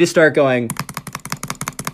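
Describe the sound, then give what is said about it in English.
A brief voice is followed by rapid, steady computer mouse clicking while playing Minecraft and fighting other players, about fifteen crisp clicks in quick succession with an even, drumming rhythm. “actually, I have a mouse with me right now.”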